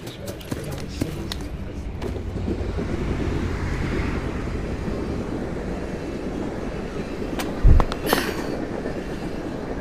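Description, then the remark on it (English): A subway train roars through a station with a loud, continuous rumble and rattling clatter, a sharp metallic bang near the end, and indistinct voices faintly mixed in. “That was a fairly impressive bit of subway acrobatics, if I do say so myself.”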